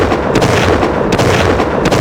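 A loud, dense barrage of gunshot sound effects, with rapid overlapping bangs and a few sharper cracks standing out, filling the whole stretch with no voices.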